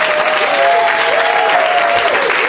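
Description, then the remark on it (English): Steady, loud audience applause for Patton Oswalt and Adam Carolla fills the whole stretch, a dense wash of clapping with a few faint whoops or cheers riding on top. “Let's you have a round of up. Applause for Patton Oswalt and Adam Carolla.”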